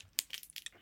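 Crisp crunching from someone eating, a quick series of sharp, bright crackly bites, with a loud first crunch followed by several smaller ones in uneven rhythm, no voices present.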